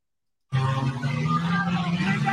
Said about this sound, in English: Car's now pulling forward. You see that? You see the car's now pulling forward? You hear your car's like burning out. You hear the crowd getting louder.